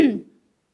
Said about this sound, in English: Now I'm going to cough, so I'm just going to move this out of the way. Sorry.